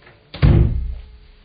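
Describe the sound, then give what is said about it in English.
A door swings shut as someone goes out, with a single heavy, low thump that rings out and fades over about half a second. No one speaks. “Lock the door when you go out, will you?”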